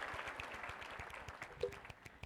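polite golf clap applause

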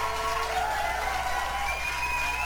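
applause and cheering

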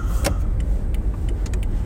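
car interior

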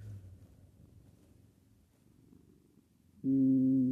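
cat purring

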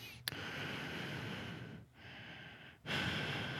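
loud breathing into microphone

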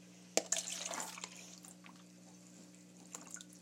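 spilled water dripping

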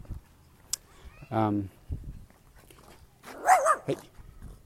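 jack Russell terrier barking

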